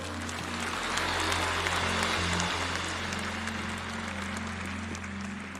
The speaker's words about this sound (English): Continue to give a clap offering to the Lord for the gift of Brother Bo Sanchez.